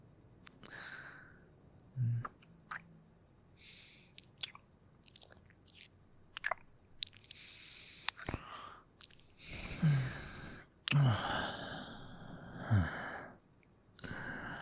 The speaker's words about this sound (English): Just look. Just me breathing down your neck like this. Makes you go crazy, doesn't it, huh?